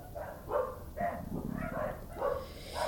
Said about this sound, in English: Oh, there's always a dog. Sorry. And they're so loud.